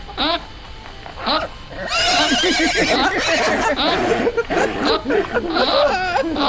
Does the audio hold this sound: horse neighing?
yes